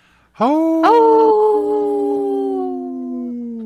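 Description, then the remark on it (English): Five people howl together in imitation of wolves, loud, each holding a long wavering tone that rises, sustains for about three seconds, then fades out. “this portion is brought to you by Howling for Wolves, protecting wolves for future generations”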